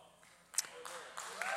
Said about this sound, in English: Yeah, it's okay to clap for the Bible. That's good.